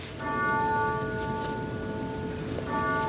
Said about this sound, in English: She knows to wait for the grandfather clock to finish ringing. Edith Wilson, whose clock it was, grew up in Virginia.